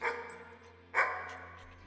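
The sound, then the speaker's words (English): Two loud dog barks, the first right at the start and the second about a second later, each trailing off with a resonant echo and no one talking. “Anton could no longer contain himself. He was a dog bursting with a vision.”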